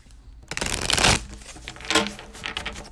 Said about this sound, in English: So I'm going to do a tarot reading about the podcast. I've got the cards here. I'm going to shuffle them.